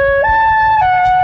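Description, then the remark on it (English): A man plays a horn in a short run of sustained, bright notes: a lower tone steps up to a higher one, then dips slightly. It is loud and clear, with no voices over it. “There it goes again. Abbott, it's the guy with the horn.”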